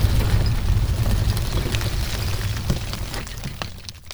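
A deep, rolling rumble of thunder fills the whole stretch, steady and heavy in the low end with scattered crackles on top, easing off slightly toward the end. No one speaks.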